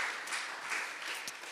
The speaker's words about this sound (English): Can we give a round of applause for the people who work in Kids Way? Come on.